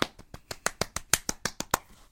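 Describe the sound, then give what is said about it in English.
A quick, steady run of hand claps, about a dozen sharp smacks in just over two seconds, fairly even in rhythm and loudness, with no voices. “That was such like random clapping.”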